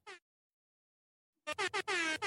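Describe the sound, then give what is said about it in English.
A short air horn toot, a pause of silence, then a rapid series of loud, blaring air horn blasts ending in one longer sustained honk, with no one speaking, played as a shout-out for a viewer's donation during a livestream. “the air horn. Can you guys hear the air horn?”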